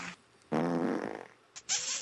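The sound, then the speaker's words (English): A loud, buzzy fart rumbles for nearly a second, then after a brief pause come a short smack and a breathy, hissing burst, like a kiss. No one talks. “The fart and the kiss for both of you.”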